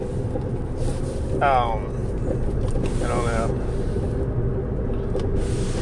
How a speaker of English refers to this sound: I don't know what's happening in my windshield right now. It's very, very squishy sounding.